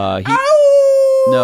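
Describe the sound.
A person's voice imitates a wolf howl: a single rising then long sustained tonal cry lasting over a second, fairly loud, bracketed by brief vocal sounds at the start and end.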